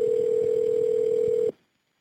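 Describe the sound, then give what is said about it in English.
A steady, clear electronic telephone tone holds at one pitch for about a second and a half, then cuts off abruptly into silence, as a dispatcher calls a woman back after the call was disconnected. No one speaks. “Luckily, the dispatcher does call her back.”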